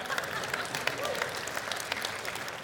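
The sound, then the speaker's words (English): A church audience applauds steadily for a fill-in worship leader, a dense wash of many hands clapping at once, fairly loud and sustained for the whole few seconds with no pause. “And I love people that, we've already clapped for you, but I love people, okay.”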